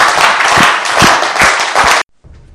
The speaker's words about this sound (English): Why don't you clap your hands together for Jesus? Was that a clap or?